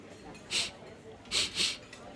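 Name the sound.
repeated nasal sniffing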